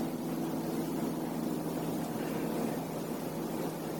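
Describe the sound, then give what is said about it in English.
A steady, low engine drone of an airplane droning overhead, a constant rumbling hum with a faint tonal whine and no voices, holding at an even, moderate level throughout. “And maybe goes to the sound of an airplane.”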